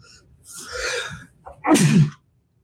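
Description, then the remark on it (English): A loud sneeze: a drawn-in breath builds up, then a sharp, explosive burst with a voiced edge, followed by quiet. “Oh, I'm going to sneeze.”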